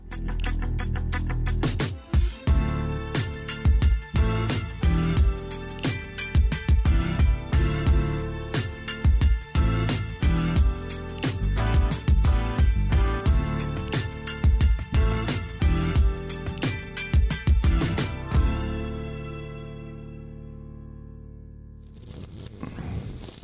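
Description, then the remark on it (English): Loud bubbling and slurping of someone drinking into the microphone, with dense irregular gurgling bursts for most of the stretch before trailing off into near quiet. “It just sounds like someone obnoxiously drinking into the microphone.”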